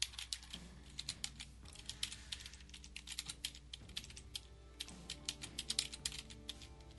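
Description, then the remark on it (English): Rapid, irregular clicking of keys on a computer keyboard, fairly loud, continuing in quick bursts with brief pauses throughout, with no voices. “It's a lot of typing.”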